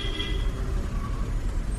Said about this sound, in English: and he just runs headlong into a moving bus.